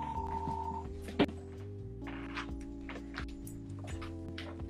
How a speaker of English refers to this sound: I've got a phone ringing. 1 second.